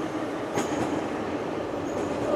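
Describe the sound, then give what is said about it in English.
A train rumbles past at steady, fairly loud volume, a broad continuous roar with faint metallic squeals and clicks from the wheels, heard alone without voices. “I don't know, like three trains pass by in this area in like the span of a minute, so I don't know if that's accurate, but meh.”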